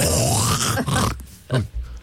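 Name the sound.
voice imitating loud snoring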